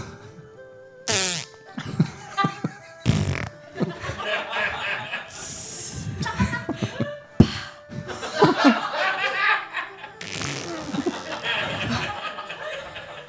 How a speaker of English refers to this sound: Don't talk about my farts.